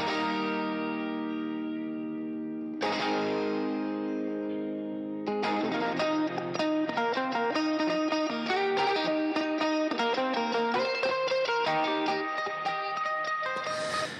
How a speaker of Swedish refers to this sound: Och det var hans Vox-gitarr, 12-strängad. Just det. Genom våran Vox AC30. Med en 57, vill jag minnas.